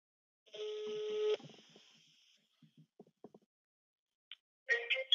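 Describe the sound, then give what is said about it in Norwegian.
A loud, steady electronic telephone tone sounds for under a second, followed by a few soft clicks, a short high beep, and then a brief bright burst of sound at the end, as a telephone call is dialed and rings. “Ja, men da ringer vi nå.”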